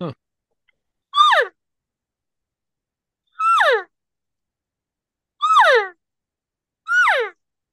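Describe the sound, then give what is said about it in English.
A person imitates a cow elk's mew four times, each call a short, nasal, descending whine with a rising start, evenly spaced by pauses of about a second or two. “When a vehicle goes by, I'll try to do a perfect mew.”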